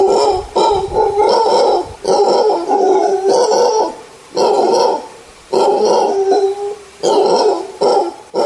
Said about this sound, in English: The thing that makes the most noise is a howler monkey. Now let's have a listen to a howler monkey.